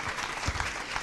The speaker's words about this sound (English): I think it's worth a round of applause, absolutely.